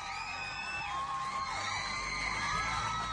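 A dense crowd of teenagers in the TV studio audience of Total Request Live with Carson Daly, screeching and squealing nonstop, many high-pitched voices overlapping into one loud, sustained wall of excited screams with no pauses.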